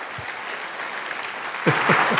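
A crowd applauds with a dense, steady wash of clapping that swells noticeably louder toward the end, with a few faint voices rising through it.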